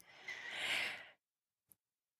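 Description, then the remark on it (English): A single deep, airy breath, swelling and then fading over about a second, followed by silence and a small mouth click. “You may find that your shoulders start to drop, that you're able to actually really enjoy taking a deep breath and shifting your busy mind.”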